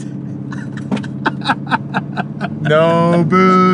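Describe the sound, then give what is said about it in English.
A car engine drones steadily, with a series of rhythmic knocks and thumps, then the engine revs harder, its whine climbing in pitch as it pulls uphill through a tight turn on mountain switchbacks at a speed of 20. “Ooh, this is a tight turn. Now we get to the switchbacks.”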